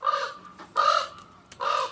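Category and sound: bird, raven calling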